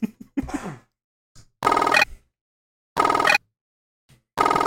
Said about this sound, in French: T'as-tu dit sonner? C'est-tu le téléphone qui sonne?